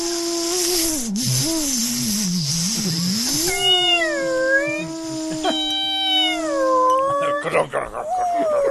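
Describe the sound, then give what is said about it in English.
A person vocally imitates dogs howling in terror: long, wavering wails that swoop up and down in pitch, loud, running continuously for several seconds with a few brief breaks. “All the dogs in the world would scream at once and run in terror.”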